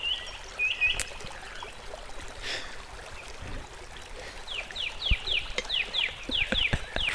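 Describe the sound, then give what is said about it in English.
Birds sing in a forest, with a few whistled notes early on, then a quick run of bright, descending chirps repeating near the end, over a soft, steady hiss of running water. “Forest bird song. What does that sound like?”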